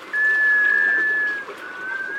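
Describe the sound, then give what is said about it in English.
A sea duck's musical wailing call rings out as one long, steady, whistle-like note that holds for about two seconds, clear over a soft background hiss. “An unmistakable clue to their presence? That mysterious, musical whale.”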